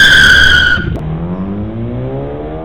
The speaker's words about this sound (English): It then performed a screeching reverse out of the parking bay and sped off.